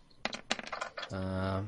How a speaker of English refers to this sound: If you don't have a die! Yeah, I don't have it, so I just got to roll two dice. Roll two and take the low...